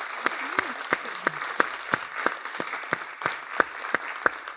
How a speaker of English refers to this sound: So thank you so much for doing this today. Let's give them a round of applause and thank them.